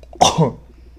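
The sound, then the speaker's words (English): A single sharp cough bursts out and trails into a brief raspy exhale, with no talking around it. “Sorry. I coughed.”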